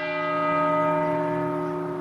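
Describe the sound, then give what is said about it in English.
A large bell rings with a rich, sustained tone, its steady harmonic hum lingering and slowly fading over a couple of seconds, fairly loud and with no voices. “I've seen this already, and I thought they added the bells in.”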